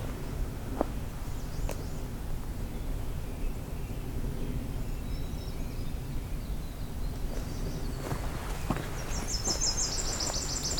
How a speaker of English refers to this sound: Hearing a winter wren up and left, so maybe we'll go check that out for a moment.